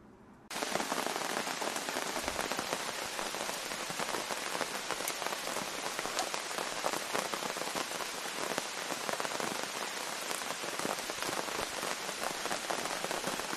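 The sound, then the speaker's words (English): Steady rain drums on a tent while camping at Sandbanks, a dense, continuous patter that starts after a brief quiet moment and holds at an even loudness throughout, with no voices. “And that sound you hear is rain.”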